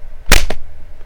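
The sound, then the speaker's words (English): A sharp, loud smack of a fly being smashed, like a swatter slapping down, quickly followed by a second, lighter slap, then quiet. No one speaks. “Fly smashing is a full-time job.”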